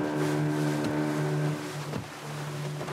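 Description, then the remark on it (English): A small boat, no bigger than a lake fishing boat, crosses the open sea from Anjouan to Mayotte carrying migrants; its outboard motor drones steadily with a strong low hum, while water splashes and wind rush against the hull. No voices are heard. “The boat owner is beside me in the boat, and he charges heftily to take illegal migrants from Anjouan to Mayotte.”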